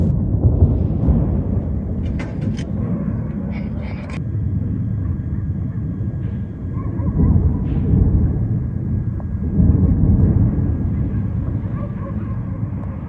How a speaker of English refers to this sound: Yemen's capital, Sana'a, has again been lit up by explosions and the sounds of more airstrikes by United States and British forces.